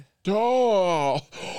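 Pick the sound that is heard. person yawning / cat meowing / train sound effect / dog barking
person yawning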